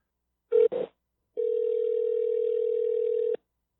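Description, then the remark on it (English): A telephone ringback tone on an outgoing call to a friend: two short beeps, then one long steady tone of about two seconds, clear and fairly loud, with no voices. “Probably annoying for you guys, hearing a lot of ringing.”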